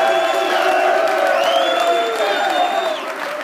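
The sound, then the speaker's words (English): A large crowd at the University of Tennessee in Knoxville applauds and cheers for the volunteers, with a steady wash of clapping and overlapping whoops and shouts, loud and sustained throughout, easing slightly near the end. “Let's have another round of applause for all the volunteers here at the University of Tennessee.”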